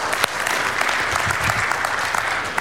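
An audience applauding, a dense, steady wash of many hands clapping at once that holds at an even, fairly loud level throughout, with no voices standing out.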